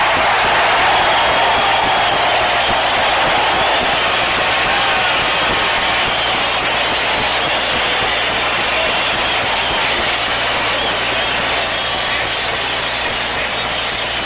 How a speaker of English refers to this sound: This crowd is screaming to the skies.